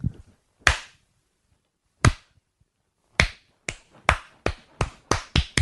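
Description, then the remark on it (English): Sharp hand claps begin slow and widely spaced, then come faster and faster, about ten in all, building toward a quick rhythmic burst with no talking, clapping a person in the way a crowd claps in a fast bowler with a long run-up. “No, what I want you to do is to clap me in like a fast bowler with a long run up.”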